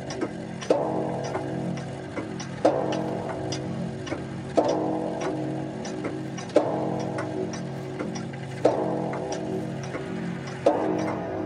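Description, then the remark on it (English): A clock chimes six slow, resonant strikes spaced about two seconds apart, each tone ringing out and fading before the next, with no voices present. “And then, after the lapse of 60 minutes, which embrace 3,600 seconds of time that flies, there came yet another chiming of the clock.”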